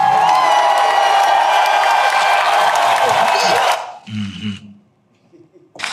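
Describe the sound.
A loud burst of crowd clapping and cheering fills the first few seconds, then cuts off abruptly, followed by brief low voices and quiet.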